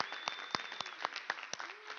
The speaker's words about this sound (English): But the entire team works tirelessly all year. So another round of applause for everyone.